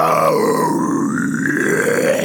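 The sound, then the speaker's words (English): A sustained, raspy vocal growl with no clear pitch lasts a couple of seconds at steady loudness, its gritty resonance sliding up and down as the voice shifts its overtones. “We have no real pitch when we growl and when we scream, but we can move.”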